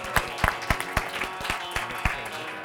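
An audience applauds, a steady wash of clapping with a series of sharper, louder claps standing out every quarter second or so. No voices are heard.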